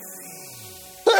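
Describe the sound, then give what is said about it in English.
A single sharp sneeze bursts out loud at the very end, after a second of quiet, faintly humming background. “I said, God bless you”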